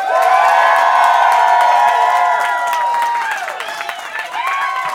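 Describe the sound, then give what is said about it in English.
A crowd cheers and claps loudly to vote for Andrew Licaroni as February 2019 champion, with many overlapping high-pitched shouts and whoops over steady applause that eases slightly toward the end. “If you want your February 2019 champion to be Andrew Licaroni, make some noise.”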